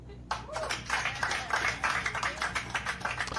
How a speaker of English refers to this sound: He's a fighter, and I'd like to take a moment to applaud this resilient young man.